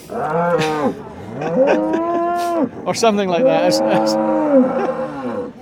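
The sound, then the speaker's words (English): Several cattle moo loudly beside the cattle ring at a show, long drawn-out bellows overlapping one after another, with a brief spoken phrase mixed in among the calls. “here we are beside the cattle ring here.”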